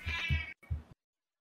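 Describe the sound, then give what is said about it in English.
A cat meows twice in quick succession, fairly loud, the first call drawn out and the second shorter after a brief gap, with no one talking. “The cat wants Meacham.”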